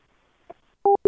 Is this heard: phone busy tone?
yes